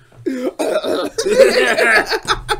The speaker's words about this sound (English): Tony Stark's like coughing. He's like, I swear, it's cigars and booze.